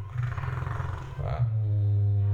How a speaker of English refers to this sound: Here's the lightsaber sound effect. It's a combination of the hum of an idling 35mm movie projector.